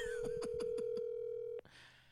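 A steady electronic phone tone hums for about a second and a half while five short beeps tick past in quick succession as an outgoing call is placed, then it cuts off abruptly into faint line hiss.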